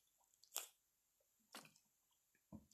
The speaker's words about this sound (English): Give me one second. I'm going to get a sip of water here.